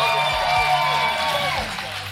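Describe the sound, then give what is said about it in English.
An audience at a live show applauds and cheers for the person selling merch, a steady wash of clapping with mingled shouts and crowd voices that holds at an even loudness for about two seconds. “And, of course, a big round of applause for the lovely Lucinda Lusions, who's right over here taking care of merch for everybody.”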